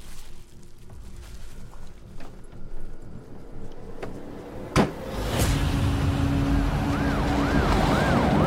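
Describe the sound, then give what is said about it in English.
An ambulance siren starts wailing in the last couple of seconds, its rising and falling tone fairly loud over a steady vehicle rumble, following a sharp knock partway through; the siren sound is put over footage of an actual ambulance. “Obviously, they would have had to put the sound of the ambulance over.”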